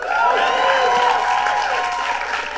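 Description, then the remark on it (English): A crowd applauds steadily and loudly for a few seconds for the Inflation Reduction Act, the clapping forming a dense, even wash with scattered cheers and shouting voices mixed in. “No, it's absolutely great to be in a room that applauds for the Inflation Reduction Act.”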